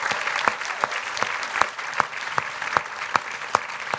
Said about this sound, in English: Round of applause, please, for that idea.